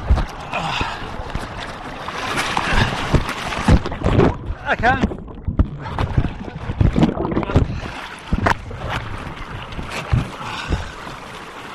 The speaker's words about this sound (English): I just hit a rock, and the water. I'm hanging with the boat and I'm sliding down the river.